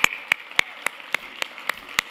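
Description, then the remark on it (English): An audience in a church sanctuary claps in unison one morning, about eight sharp, even claps at a steady brisk tempo over a faint background hum, with no one speaking. “Let's applaud this day this morning, okay?”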